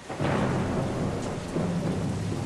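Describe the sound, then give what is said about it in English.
Steady heavy rain hisses in Los Angeles while a low, rolling rumble of thunder swells underneath and lingers throughout, with no voices. “And then it rained, quite a lot for Los Angeles.”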